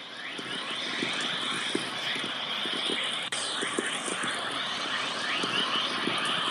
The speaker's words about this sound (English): Well, that wave that you just heard there was Whistler Mode Chorus, which is a particularly important wave which can accelerate particles in the radiation belts up to very high energies.